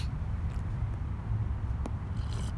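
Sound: sipping a hot drink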